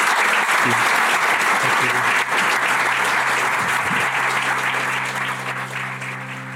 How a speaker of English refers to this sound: Please join me in giving a round of applause